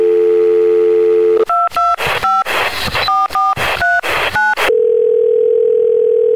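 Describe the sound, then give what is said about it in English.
A steady telephone dial tone hums, then a quick run of about ten touch-tone beeps as a number is dialed, followed by a steady ringback-like tone; loud, with no voices. The call is to the Movie Zone phone hotline of the Larry H. Miller Megaplex Theaters. “In fact, let's jump out to the Movie Zone phone hotline and talk about just how much better things are going to get this week at Megaplex Theaters.”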